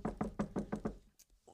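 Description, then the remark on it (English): A quick run of six evenly spaced knocks on wood, solid and hollow-sounding, followed by a faint click and a soft thump after a brief pause. “Knock on wood.”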